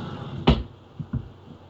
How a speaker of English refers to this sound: I give him a secret knock.